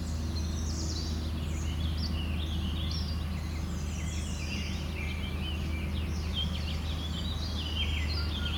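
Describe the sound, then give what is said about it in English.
A Baltimore oriole sings among a busy chorus of birdsong, its clear whistled phrases coming and going over a steady low background rumble, with no one speaking. “Baltimore Oriole came up. Which there is one here.”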